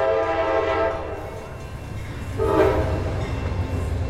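A train arriving at a station in the French coastal town of La Ciotat rumbles with a steady mechanical roar, its horn blaring in two long, loud blasts, one at the start and another shortly after, with no voices.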